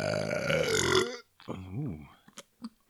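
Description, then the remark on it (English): A long, loud, rumbling burp lasting about a second, then a short pause and some brief voiced sounds like a person reacting or starting to talk. “Everybody loves burping.”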